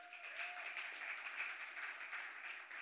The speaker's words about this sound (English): Clap your hands if you guys have enjoyed it so far.